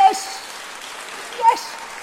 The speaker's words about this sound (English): Why are you all clapping? Don't encourage him.